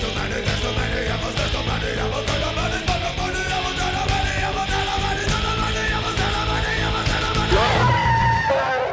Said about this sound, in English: I love the shriek